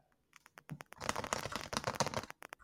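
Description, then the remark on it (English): Rapid keystrokes clatter on a computer keyboard, starting with a few scattered taps and building into a dense, continuous burst of typing, moderately loud, with no voices. “Who's typing the Bill of Rights?”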